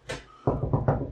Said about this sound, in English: But there's a knock at the door.